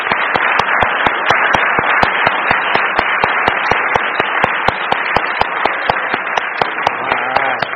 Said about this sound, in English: Class of 2022, please turn your tassels. All right, why don't we give them a round of applause here.